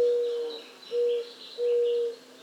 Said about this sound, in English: Inca doves.